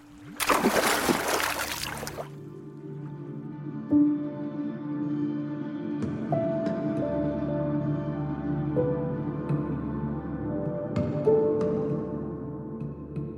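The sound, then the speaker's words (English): A loud burst of water splashing opens as Flicky, a kobold with a rope wrapped around his waist, dives into a lake, then gives way to a muffled, droning underwater ambience with low sustained tones and no voices. “And he trudges into the waters of the lake with a rope wrapped around his waist. And he dives down.”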